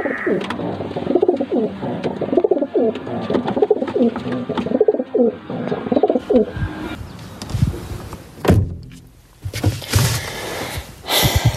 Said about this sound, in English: I even miss the pigeons that fuck on our bathroom windowsill.